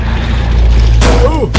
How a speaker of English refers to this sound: That's not the first time I've ever been hit by a car. That's not the second time I've ever been hit by a car.